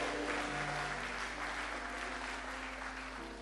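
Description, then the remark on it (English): A church audience claps steadily for a few seconds during a sermon, a dense, continuous patter of many hands with a low hum underneath and no voices rising above it. “Those of you clapping, may God give you daily benefits.”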